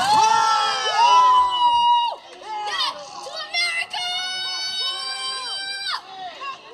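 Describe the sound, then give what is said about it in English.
A crowd of people in the street in Kenosha yells and shouts together outdoors while torching the county courthouse, loud, with overlapping high-pitched cries rising and falling in ragged bursts rather than a steady chant. “Because people are in the street torching the county courthouse while shouting, "Death to America."”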